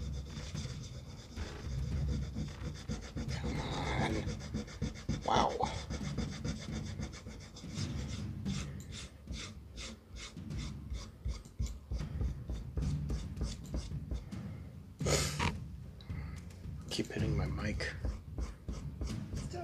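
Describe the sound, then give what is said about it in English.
A pencil rubbed back and forth over the peeled-off second layer of a paper document, to reveal the original writing, makes a steady run of quick scratchy strokes, with a few louder bursts, while people talk over it. “So the original documents stay there, but if you take the second document, you can do like that pencil thing over it where you can see the original writing.”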